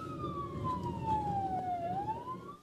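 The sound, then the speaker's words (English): A police siren wails loudly, its tone sliding slowly downward and then sweeping back up, over a steady rumble of engine and road noise from a moving police car during a slow-speed chase of a car driven by a 12-year-old. “You get a high-speed, no, slow-speed chase that is, well, here's the POV of the cops with a 12-year-old behind the wheel. Let's just turn up the volume and listen to this one.”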